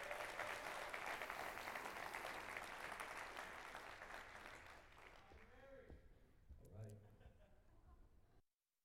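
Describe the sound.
A crowd claps loudly and steadily for several seconds, then the applause thins and fades while a voice begins speaking near the end.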